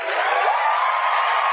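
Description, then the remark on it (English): A short burst of crowd cheering from a sound-effect button, a dense, steady wash of noise that holds at an even loudness for about a second and a half with no talking. “Where's my button? There we go. The crowd loves it.”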